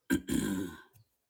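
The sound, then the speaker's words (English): Someone clears their throat once, a rough, raspy rumble lasting under a second, followed by a brief softer grunt. “Yes, let me clear my throat.”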